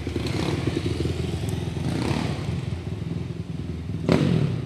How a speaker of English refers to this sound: I don't know, even motorcycles go by. We outside, y'all. We outside.